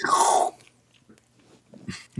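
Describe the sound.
A person imitates a loud, wet slurping noise, meant as a TikTok sound effect of someone slurping body wash in a shower, for about half a second, followed by soft mouth sounds and a shorter second slurp near the end.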